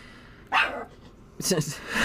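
A dog barks twice, two sharp, fairly loud barks about a second apart, against a quiet background.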